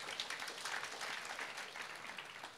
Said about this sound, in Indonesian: Tepuk tangan kita bagi Tuhan.